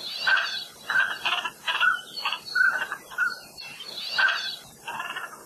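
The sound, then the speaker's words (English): Northern pintail ducks (koloa mapu in Hawaiian) calling in a steady series of about eight short, reedy bursts, some rising into brief whistled notes, fairly loud with no one talking. “In Hawaiian, koloa means duck, and mapu means windblown, or wafted in with the wind, perhaps because they would regularly show up in Hawaii with the trade winds every August, making their very duck-like calls.”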